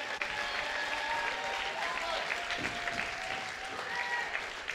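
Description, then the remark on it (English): A church audience claps steadily at the pastor's call, a dense wash of many hands applauding at once, with faint voices and cheers mixed into the continuous, fairly loud clatter. “Clap your hands.”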